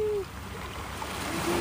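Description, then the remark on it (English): Ocean water splashes and washes in a steady, broad rush at a former beach where people swim, filling the short clip, with a faint tonal hum briefly at the start and again near the end. “…”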